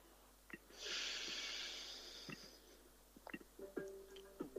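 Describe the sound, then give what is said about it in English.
A long, airy inhale drawn in slowly for about two seconds, fairly soft, with a few small mouth clicks before and after and no talking; a breath taken during a guided breathing exercise. “Breathing in.”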